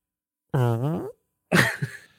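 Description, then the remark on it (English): A voice imitates a fart: a buzzy, wavering blat, a short pause, then a sputtering, breathy second burst that trails off. Fairly loud, with no other sounds. “Like the worst fart.”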